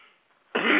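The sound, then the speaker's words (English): A single loud cough from a speaker on the phone bursts out suddenly after a brief near-silent pause, harsh and breathy, with no talking around it. “I usually mute my phone when I have to cough, but I'm afraid to touch any of this equipment because we might go berserky again.”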